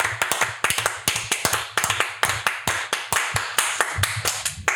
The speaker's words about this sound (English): Oh, damn. I almost just said there was two guests in a row that didn't clap for themselves, but came and saved it. Yes. He did a small clap.